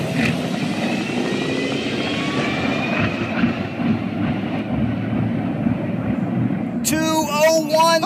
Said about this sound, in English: So the whole thing, they were trying to be the first electric dragster to reach 200 miles per hour trap speed.